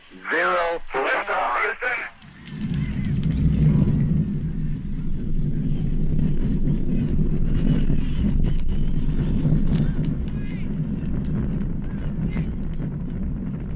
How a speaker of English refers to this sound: T-minus 10, 9, 8, we have a go for main engine start. We have main engine start. 4, 3, 2, 1...